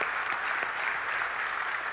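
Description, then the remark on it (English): A church audience claps steadily, the applause a dense, even wash of many hands with faint vertical bursts of individual claps, sustained at a fairly strong level with no voices standing out. “So let's clap for that.”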